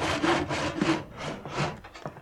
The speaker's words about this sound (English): Looks like a 1x3. 1x4? 1x3? Yeah, I believe that. Why are you sawing a 1x3? I just want to know.